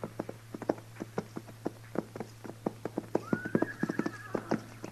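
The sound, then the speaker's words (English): Saddled horses wandering loose down a street with nobody around, with a steady, unhurried clip-clop of hooves and a brief whinny partway through over a low constant hum. No one speaks. “what do you figure them horses are doing down there? It ain't right they should wander around like that without it.”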